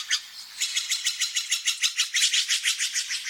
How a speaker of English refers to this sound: Ed Herman collected these calls of birds and other creatures that echo each morning through the valley.